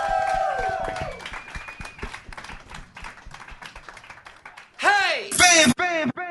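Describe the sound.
A small crowd claps steadily for several seconds, with a whoop at the start, the applause thinning out before a loud, close voice cuts in near the end.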